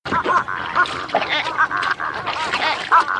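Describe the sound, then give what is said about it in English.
Baby giraffes make a steady stream of overlapping nasal, bleating calls, quacky and mid-pitched, with short wavering bursts repeating throughout over a background wash of water. “All right, reveal time. Baby giraffes.”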